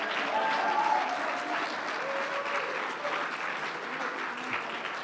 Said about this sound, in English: Oh, I wish if you believed that, you'd clap your hands and shout unto God.